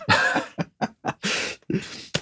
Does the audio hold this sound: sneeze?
yes